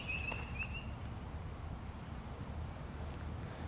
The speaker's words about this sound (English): I think that's red-winged blackbirds. They must only do that noise at a certain time of year because I don't remember it. They, just a minute ago, they were doing the normal noise.